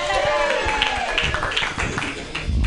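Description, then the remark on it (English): An audience at a comedy show claps steadily in a dense, continuous wash of applause, with scattered cheers and a rising whoop early on, holding at a fairly loud level throughout. “Those who are not clapping, you're looking at your likes.”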